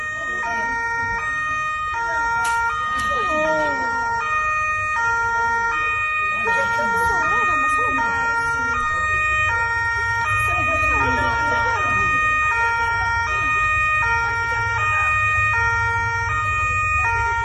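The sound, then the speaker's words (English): A European emergency siren blares its two-tone hi-lo pattern, alternating steadily and loudly throughout, with indistinct voices and street noise underneath. “Man, those European sirens, it makes me homesick here.”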